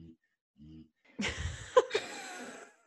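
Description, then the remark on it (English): A dog snores with two short, low grunting snorts, then a longer raspy, snuffling breath with a brief squeak, a muffled, pig-like sound. The female dog has her nose shoved up against a kennel. “Is that your dog? Yeah, she's snoring.”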